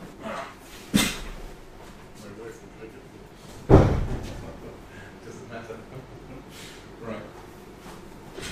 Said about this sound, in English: We can close the doors and all that stuff. We can do that, yeah, sure.